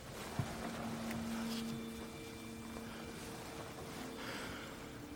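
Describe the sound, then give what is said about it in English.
A boat's steady engine drone over a broad rush of churning water, with a low humming tone and a brief knock near the start, continuous; a boat, rotted almost through, rising out of the water. “boat, rising out from the water, rotted almost through.”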